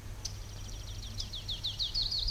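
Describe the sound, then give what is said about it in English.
A distant warbler sings a quick series of high, thin notes that rise in loudness and speed toward the end, over a low steady background hum. “Who is it? It's a warbler.”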